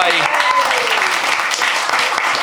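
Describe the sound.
A crowd claps in a loud, steady round of applause, a dense wash of overlapping handclaps that stays even throughout, with a brief voice audible at the start.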